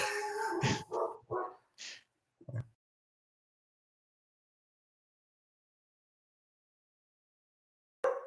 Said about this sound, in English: Oh, I got my dog to bark. That was a stupid idea.